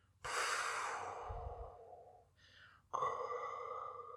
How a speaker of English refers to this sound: You hear the sound of the helmet and the suction and the airtight seal to keep him alive. And then the famous Vader breathing.